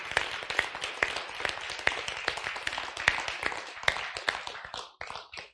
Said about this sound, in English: Thank you, Lord. Clap our hands and thank the Lord.